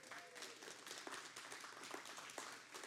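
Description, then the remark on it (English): A church audience applauds steadily, many hands clapping in a dense, continuous patter with a few sharper claps standing out, moderately loud and with no talking. “Will you give them a round of applause?”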